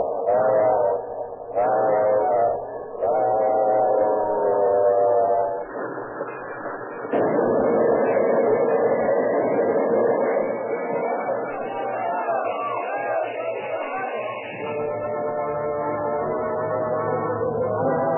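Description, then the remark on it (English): A passenger train's engine whistle sounds several loud, harmonic blasts at night in the desert, short ones first and then a long sustained wail, over a steady low rumbling of the moving train. “A piercing shot from the engine whistle shook the air.”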